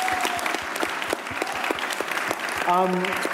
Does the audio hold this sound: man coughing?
no